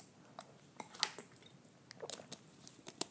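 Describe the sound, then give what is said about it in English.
A plastic water bottle from Brisbane being picked up and drunk from: scattered crinkles, clicks and soft wet squishes over a few seconds, with no one talking. “Actually, grab some water, hold on.”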